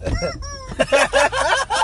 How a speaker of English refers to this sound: That was so fucking funny. That was an actual chicken.